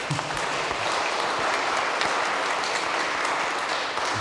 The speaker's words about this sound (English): So thank you all, and thanks for supporting Lots. It's worth applauding, absolutely.